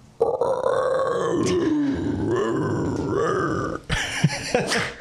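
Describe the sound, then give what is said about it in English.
A person imitates a howler monkey, letting out a long, loud, guttural roaring howl for several seconds, then a short burst of rougher grunting calls, with no talking. “Oh my gosh, you want to hear my howler monkey?”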